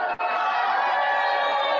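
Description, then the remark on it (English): A large convention crowd boos the Marquee Network loudly and continuously, a sped-up sound drop of a dense wall of many voices sustained without a break for about two seconds, with no other talk over it. “Believe me, you won't be booing about that in a year.”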